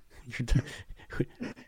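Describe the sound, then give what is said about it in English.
A dog pants in a few quick, breathy bursts, with soft whimpering mixed in, as it is being put down, over roughly two seconds at moderate loudness. “Let me put my dog down.”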